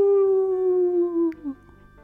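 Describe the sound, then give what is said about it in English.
A storyteller's voice imitates the howl of Coyote standing on a shore in the story Little River Turtle: one long, loud "aroo" held for over a second and sliding slowly downward, then trailing off into a brief, quieter tail. “Coyote stood on the shore and he howled, "Aroo!"”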